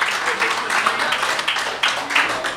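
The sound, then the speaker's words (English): A crowd applauds Finn Balor steadily, dense clapping filling the whole moment at a fairly loud level, with a few voices mixed in under the noise. “Can we get a round of applause for this guy?”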